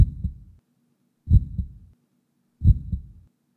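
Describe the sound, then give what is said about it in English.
A recorded heartbeat thumps three times at a slow, steady pace, each beat a deep, muffled double thud with brief silence between. No one speaks over it. “Well, to get a sense for what you're hearing, I'm going to play a heartbeat.”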